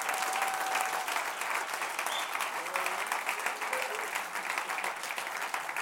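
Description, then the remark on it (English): Sustained applause from a sizable audience at Connect, applauding the senior pastor and his wife, steady dense clapping filling the room for several seconds with a few faint cheers mixed in, fairly loud throughout. “And I want you to give them a round of applause as well.”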